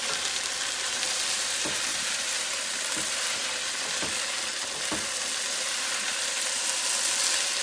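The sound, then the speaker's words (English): Steady, loud sizzling of food being sautéed in oil in a pan, with a handful of brief scraping clicks from stirring spaced a second or so apart. No one speaks. “So now I'm going to give all my food up a stir because it's all, like I said, you have to be quick here because you don't want to burn it.”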